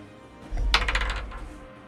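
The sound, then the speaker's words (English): A plastic d20 die, rolled in a tabletop game, clatters across a hard tabletop, a quick burst of bright rattling clicks that tumble and fade over about a second, with no voices. “Okay, so roll a d20. I'm going to do it now.”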